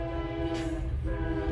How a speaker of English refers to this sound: Damn, this train loud.